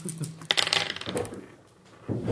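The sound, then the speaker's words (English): Dice clatter onto a hard floor: a burst of sharp, bright clicks and rattles that bounce and tumble for a second or so before settling, with no one talking. “Oh, I'm throwing dice on the floor.”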